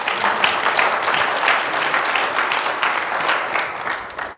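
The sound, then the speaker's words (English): A crowd at a church service clapping steadily as a round of applause for God, a dense, sustained burst of applause that stays loud and even for several seconds before cutting off. “Give God one more round of applause.”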